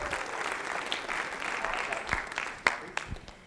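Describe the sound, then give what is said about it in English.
An audience applauds Jesus steadily, a dense wash of many hands clapping at even loudness, with a few sharper individual claps standing out near the end as it begins to thin. “Give Jesus another big hand clap.”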